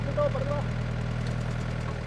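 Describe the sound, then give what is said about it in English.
A tractor engine idles steadily, a constant low rumble that holds even throughout, with a few faint higher tones briefly rising over it near the start, as the tractor lays down plastic over a California strawberry field being prepared for planting, on a foggy day. “Today, his crew is preparing for planting, using a tractor to lay down plastic to protect the strawberries.”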